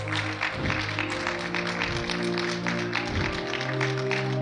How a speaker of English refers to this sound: Now give God a hand clap of praise in this place.